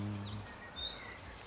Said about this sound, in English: Does it feel different singing it out here in the open air with the birds singing all around you?